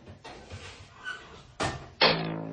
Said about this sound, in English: There was a oven door being opened.